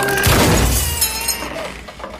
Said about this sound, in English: You broke her door.